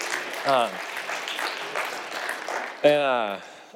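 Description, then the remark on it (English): A crowd applauds the musicians, band and singers after worship, steadily throughout, a dense wash of clapping, with two brief voiced shouts or cheers rising above it near the start and toward the end. “Yeah, you can clap for.”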